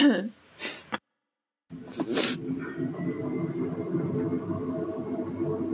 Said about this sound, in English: There's a big truck driving down my street. Oh, maybe that's what I hear. I was like, there's an ambient noise.